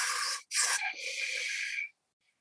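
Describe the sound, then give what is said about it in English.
A short burst of pressurized oxygen hissing from a can, a brief pause, then a longer steady hiss with a faint whistling tone as someone breathes it in. No one speaks. “Yeah, are you still breathing in?”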